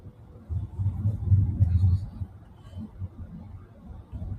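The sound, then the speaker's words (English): Low, steady road rumble from inside a moving car, swelling a little louder for a couple of seconds before settling back to a dull drone, with no clear talking. “I drove a lot, just like I'm doing right now.”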